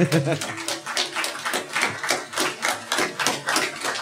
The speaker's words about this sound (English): They can sure clap for three people. It's amazing. We'll fix it. They're very loud.